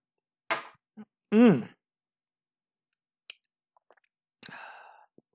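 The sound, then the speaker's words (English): A drinking sequence: a quick sip and gulp of bourbon, finishing the glass, then a voiced satisfied exhale, a few soft mouth clicks and a breathy rustle, with no speech. “Let me kill my glass.”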